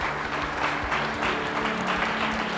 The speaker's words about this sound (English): Let's give him a great clap. Just really appreciate your ministry.